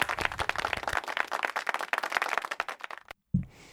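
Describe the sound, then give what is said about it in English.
A small group claps briskly for about three seconds to welcome the guests of the day on a show, a dense, steady patter of overlapping hand claps that cuts off abruptly, followed by a short low thump. “Those are our guests for today, so a little clap and welcome to them.”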